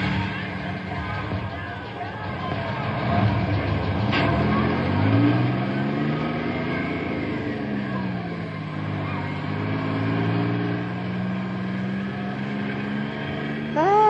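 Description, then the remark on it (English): A heavy bus engine revs loudly, its pitch climbing and sliding as it pulls away, while faint indistinct voices murmur in the background. “Double time into the bus.”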